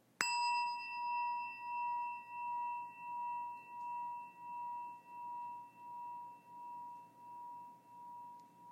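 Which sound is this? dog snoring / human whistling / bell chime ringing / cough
bell chime ringing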